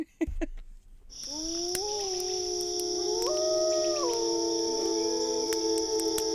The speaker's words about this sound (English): Two Neolithic hunters sit around a campfire. Wolves howl in the distance.